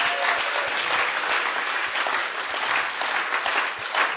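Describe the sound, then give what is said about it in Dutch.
An audience applauds for God, a dense, even wash of many hands clapping at once that holds at the same loud level throughout. “Let's give God a great round of applause.”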